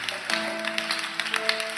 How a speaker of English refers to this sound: If you are, I told you, if you are clapping for Jesus, clap your hands well.